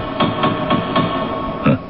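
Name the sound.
knocking on a gate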